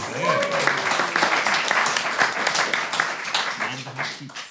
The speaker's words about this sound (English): They are presently on 9.5. A round of applause for Ecto-1.